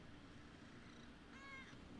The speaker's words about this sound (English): Listen to his very cute purring, though. Purr for the people.